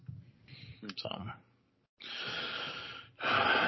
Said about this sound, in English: What the fuck was that? A cough? Sound like a broken squeaker, bro. Probably was. You remember that penguin in Toy Story with the broken squeaker that's put on the top shelf? That's what you sounded like just now